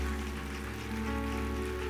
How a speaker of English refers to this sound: Before you take your seats, let's give God a hand clap of praise for your leader,